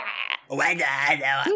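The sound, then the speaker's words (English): A voice imitates a frog croak with a drawn-out, warbling, throaty call, fairly loud, preceded by a brief higher nasal sound and a short pause. “That's the sound you make. Much like a living frog, like a human frog.”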